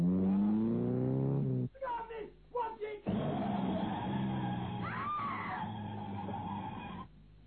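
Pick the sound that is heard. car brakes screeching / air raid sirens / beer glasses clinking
car brakes screeching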